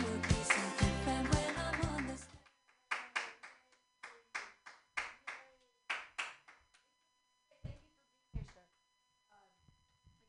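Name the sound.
audience clapping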